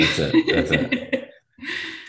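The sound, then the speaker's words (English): A run of short, rough coughs in quick succession, followed by a brief pause and one more raspy cough. No speech, just the coughing fit at moderate loudness. “I'm just coughing.”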